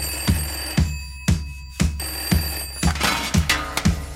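A telephone bell rings insistently in a steady, repeating pattern of sharp strikes about twice a second, loud, with a sustained metallic tone between the hits and no one talking.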